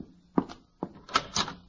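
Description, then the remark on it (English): Four solid knocks on a front door as Mr. Gildersleeve arrives, two spaced apart and then two in quicker succession, moderately loud with no voices. “Oh, there he is. Shall I go to the door?”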